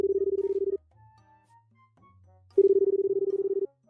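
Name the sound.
telephone ringback tone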